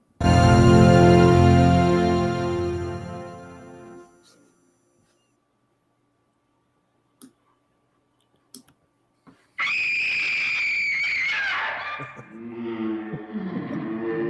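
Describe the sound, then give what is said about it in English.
At the opening of an old-school horror film, a loud, resonant chord rings out and fades, then after a few seconds of near silence and faint clicks, a piercing high scream erupts and slides downward into lower wailing. “Any movie that just opened with the screen straight out the gate, scream, right?”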